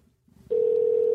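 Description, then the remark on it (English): Faint, muffled line noise gives way halfway through to a loud, steady telephone tone as a phone call is being placed; it starts abruptly and holds unbroken to the end, with no voices. “we're going to call Juna right now”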